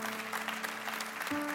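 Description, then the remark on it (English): Audience applause at a church service fills the moment with a steady, dense wash of clapping, moderately loud and sustained, with a low held tone humming underneath and shifting pitch near the end. “Yeah, you can clap. You can clap.”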